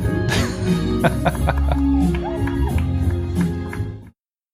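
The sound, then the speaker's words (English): A crowd at a Joe Biden campaign event in Warm Springs, Georgia, socially distanced in circles, cheers and shouts as he briefly sprints, in a steady, dense roar with scattered whoops and sharp claps breaking through, before the noise cuts off abruptly after about four seconds. “He momentarily sprints and they cheer him.”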